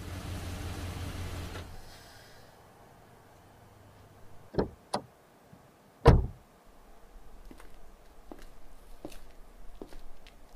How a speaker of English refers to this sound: After the three men finished work for the day, they all got into Connor's truck and headed for Aiden's storage.